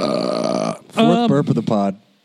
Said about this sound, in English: Fourth burp of the pod. I know, it's that beer, man.